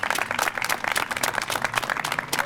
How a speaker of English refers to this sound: So just one round of applause, one more for Councilman Clark, please.